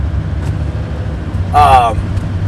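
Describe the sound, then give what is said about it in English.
A giant dump truck hauling rocks passes by, its deep, steady engine rumble droning throughout, with a brief voice-like tonal burst rising over it near the end. “there's a giant dump truck behind me with some rocks.”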